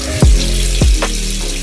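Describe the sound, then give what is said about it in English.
Water streams steadily from a faucet into a sink, a continuous rush broken by two dull, low thumps and a brief higher splash, with no voices present. “In fact, according to the nonprofit news organization Mississippi Today, for the past 5 years, officials have told pregnant people and children under five to not drink the tap water.”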